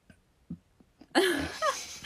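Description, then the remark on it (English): A few faint short puffs of breath, then a loud, drawn-out burp with a low, croaking pitch that wavers and lasts nearly a second. “Speaking of burps.”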